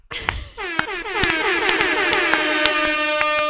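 After a brief rough burst, a loud air horn blares continuously with a brassy, harmonic-rich tone, overlaid by a steady rhythm of sharp percussive hits until the end.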